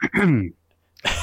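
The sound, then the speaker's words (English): A voiced, throaty sound is followed by a brief pause and then a harsh, breathy cough burst, moderately loud, with no talking around it. “Coughing right in the...”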